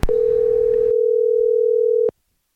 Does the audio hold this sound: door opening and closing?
no